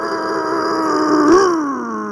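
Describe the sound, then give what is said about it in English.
A person vocally imitates the loud roar of a Honda Element car engine with no muffler as the ignition is turned on, a sustained growling drone that swells briefly midway before settling, steady for about two seconds. “I turned on the ignition, and it sounded like I had lit a jet engine.”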